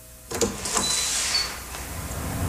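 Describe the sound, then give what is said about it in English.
A door opens with a sudden mechanical clunk, then a steady airy sliding hiss, with faint creaks or squeaks for a couple of seconds. No one speaks. “Get the door for me, honey.”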